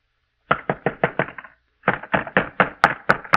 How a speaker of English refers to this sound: It will be your duty to get him to quiet down. Keep him from pounding on this door.